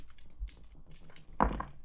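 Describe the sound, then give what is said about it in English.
Dice rattle and clatter in a quick series of light, sharp clicks, ending in a louder hollow knock as they settle. No one speaks. “Let's use a new dice.”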